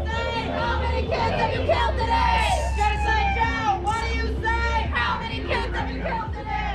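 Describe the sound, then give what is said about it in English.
A loud crowd of protesters blocking the Bay Bridge in the San Francisco Bay Area, during the Asia-Pacific Economic Cooperation Summit, fills the air with overlapping shouts and raised voices, with chanting and yells rising and falling over a steady low rumble that continues throughout. “And in response, protesters blocked the Bay Bridge today.”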